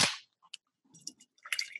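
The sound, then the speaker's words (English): A beer can pops open with a sharp, loud crack like a gunshot, followed by faint clicks and short bursts of fizzing hiss, no voices. “It does sound like a gunshot.”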